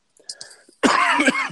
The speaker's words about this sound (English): I've got it. My own cough.